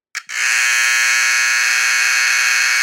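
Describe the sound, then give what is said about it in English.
A loud battery-operated electric doorbell buzzer starts after a brief click and holds a steady, harsh, rasping drone without pause for nearly three seconds, unaccompanied. “And then battery-operated buzzers were soon to follow, which is kind of funny to think that you had to actively replace a battery to maintain something that might have sounded like this.”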